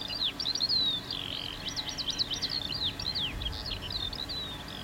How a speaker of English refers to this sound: Birds.